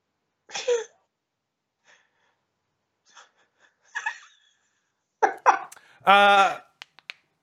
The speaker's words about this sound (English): excuse me, I just had to sneeze. I don't have COVID. Sorry, sneeze.